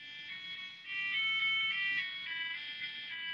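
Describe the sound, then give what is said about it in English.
A mobile phone rings with a bright electronic ringtone, a continuous melodic chime of high, steady tones that grows louder after the first second and keeps playing, with a faint low murmur underneath. “Somebody's phone, I think, is going off.”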